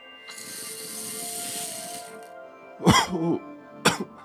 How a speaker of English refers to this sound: Not a filler episode, but wow, I just coughed right in the microphone. Rest in peace, headphone users.